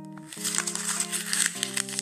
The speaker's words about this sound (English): That's me crunching paper. But you know what that was? I'm trying to explain to you what my vagina felt like now, guys.